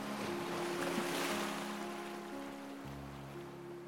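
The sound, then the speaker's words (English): Steady ocean waves wash and hiss in a continuous, even surge, with soft sustained piano tones humming gently underneath; no one speaks. “You're listening to ….”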